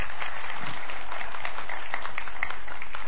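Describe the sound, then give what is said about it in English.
An audience claps steadily for about three seconds, a dense, even wash of many hands at moderate loudness with no voices over it. “So now, you can clap. Absolutely, you should clap.”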